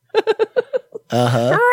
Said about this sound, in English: Uh-huh. Wow, that was loud. Sorry. Away from the mic when you yell.